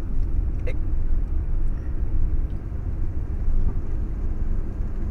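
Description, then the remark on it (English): An old car's engine drones with a steady low rumble, slowly building as the car with a faulty transmission takes a while to pick up speed to about 25, heard from inside the car with no talking. “See, it takes a while. I don't know why it does that. This is like an old man. This is an old man car.”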